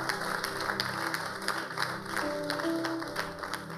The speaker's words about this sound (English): Please let me clap for him.